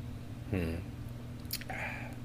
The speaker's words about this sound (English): Take a second sip and see what I can gather from it.